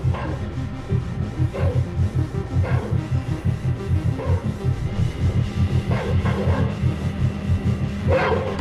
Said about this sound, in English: Feel my sonic pulse.